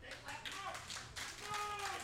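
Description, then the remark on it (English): A crowd at a match in Rockingham, Richmond County, claps after being told not to, in a steady, dense patter of many overlapping hand claps, fairly quiet and continuous throughout, with some faint voices mixed in. “Yeah, no, he said do not clap, and the crowd started clapping.”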